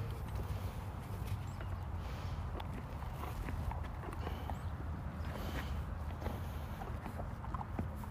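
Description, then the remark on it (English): The hooves of a horse named Rainy clip-clop at an unhurried walking pace as she is led away to be put away after a riding lesson, each step a sharp knock in a steady rhythm over a constant low background rumble, with no voices. “Horse riding lesson”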